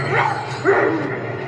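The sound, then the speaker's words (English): Two short, yelping dog barks in quick succession, moderately loud, over a steady low hum. “Or is it the barking of the village dogs?”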